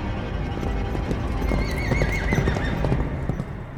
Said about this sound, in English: From the deck of the ship erupted the scream of a horse as it jumped and landed on the pier, sparks erupting where its hooves met stone. The beast roared into the night of the countryside, a man cloaked entirely in black riding bareback upon it.